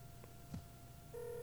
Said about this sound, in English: Oh, let's go to the phone call in. I'm calling him now. Oh, we'll get to see what he sounds like.